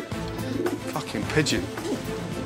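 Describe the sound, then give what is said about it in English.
A pigeon coos in low, throaty, rolling notes, repeating softly and steadily, with some murmuring and background noise underneath. “Pigeon.”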